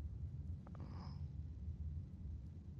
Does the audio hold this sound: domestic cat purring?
yes